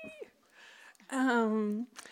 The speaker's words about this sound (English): There's a cat upstairs too. That's maybe they sense it.